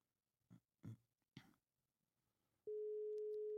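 telephone ringing tone

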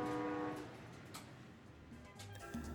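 train passing

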